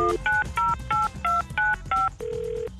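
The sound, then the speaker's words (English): A quick run of about seven telephone keypad tones, each a short dual-pitched beep in steady rhythm, as a cell phone number is dialed, followed by a longer single tone like a line starting to ring, over low background hum. “send Michael Oppenheimer to the phone to call your friend Jamie on her cell phone”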